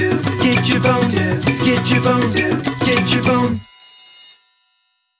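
A loud, bright phone ringtone melody plays alone for about three and a half seconds, with rhythmic chiming notes, then cuts off and leaves a fading ringing tail.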